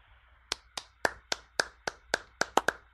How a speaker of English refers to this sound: I was given the golf clap before anyone.